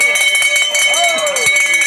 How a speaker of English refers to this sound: But suddenly, a pilot got everyone's attention by ringing a bell.